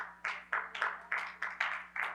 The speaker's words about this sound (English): Nice golf clap.